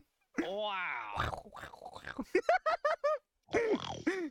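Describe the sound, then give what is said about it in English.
A person imitates a pig, voicing a drawn-out grunt followed by a rapid string of short, nasal oinking bursts and one final squealing oink, fairly loud. “Oink, oink.”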